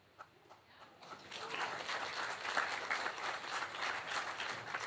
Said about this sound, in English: I'm going to keep asking questions until I get applause to the question. So we're just going to be here all day.